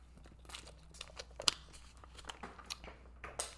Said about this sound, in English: Let me grab a sip of water real quick.